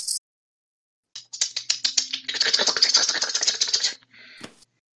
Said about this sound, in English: Through the webs underneath your feet, you feel disturbances as creatures begin moving across them in the distance. And you hear... the skittering sounds of claws clicking across rocks.